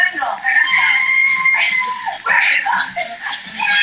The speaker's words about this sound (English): God, who is screaming?